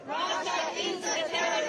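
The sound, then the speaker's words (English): A crowd of protesters outside the Russian embassy in D.C., in solidarity with Ukraine on the one-year anniversary of Russia's invasion, chanting together, many voices merging into a loud, continuous roar with rhythmic swells of shouted words. “Protesters joined in solidarity for Ukraine on the one-year anniversary of Russia's invasion.”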